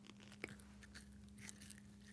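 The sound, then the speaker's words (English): Biting and chewing of an all-natural-style gummy snack, one sharp bite followed by soft, irregular mouth sounds, fairly quiet over a low steady hum, with no talking. “It's that kind of like all natural gummy snack, even though I'm sure it's not all natural.”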